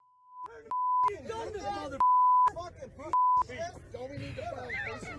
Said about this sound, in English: This is really inconsistent beeping.